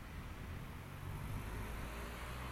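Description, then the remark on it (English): Steady rumble of road traffic with quite a few cars on a cool spring day, low engine hum blending into a continuous wash of tyre noise at an even loudness, with no distinct individual passes and no voices. “Maybe the breeze is taking them away, but certainly there are quite a few cars here.”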